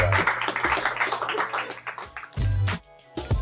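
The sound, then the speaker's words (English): A small crowd gives a guest a round of applause: dense, rapid clapping that thins out, then a few louder bursts that sound like cheers and whoops, with a low hum underneath. “Can you give our guest a round of applause for being here?”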